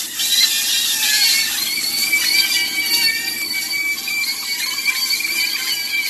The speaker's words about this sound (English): I was cooking some sausage yesterday and in a skillet, and it sounded very creepy to me, like it was coming from a movie. Like screaming children.